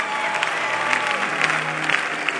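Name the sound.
audience clapping hands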